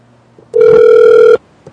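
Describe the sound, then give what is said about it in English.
A single ringback tone from an outgoing phone call to a 7-Eleven: one steady, fairly loud electronic buzz lasting under a second, then silence. No one speaks. “All right, calling the 7-Eleven.”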